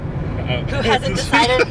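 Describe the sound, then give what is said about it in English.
A steady low rumble of a car interior on the road runs throughout, with voices talking over it partway through, fairly loud. “for listening to Let the Right Films In, a movie podcast coming to you live from the road.”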